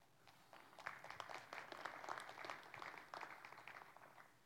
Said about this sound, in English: We're clapping, rightfully so. That is awesome.